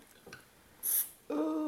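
A 500 ml bottle of 4.5% beer cracked open: a quick, bright hiss of escaping gas lasting a fraction of a second, then a steady, low tonal hum that carries on to the end.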